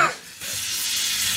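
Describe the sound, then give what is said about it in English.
A shaken drink can is opened and sprays out with a steady, loud, sustained hiss of fizzing liquid lasting about a second, with no voices. “Somebody shook it up for me.”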